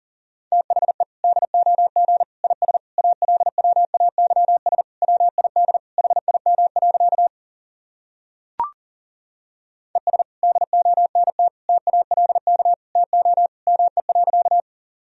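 Fast Morse code at about 40 words per minute: a steady mid-pitched tone keyed in rapid dots and dashes, broken by a short pause with a single click before the keying resumes.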